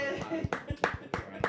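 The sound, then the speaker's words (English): A thin, fake-sounding round of applause: a handful of sharp handclaps in a loose, uneven rhythm, roughly four bursts in a second and a half, with a faint voice murmuring underneath. “Fake applause.”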